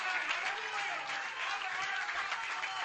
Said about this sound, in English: Would you clap your hands in some glory right now?